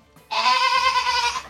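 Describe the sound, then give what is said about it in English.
A single loud goat bleat, a sustained nasal wavering cry lasting about a second, clear with no talking. “Oh, I miss those goats.”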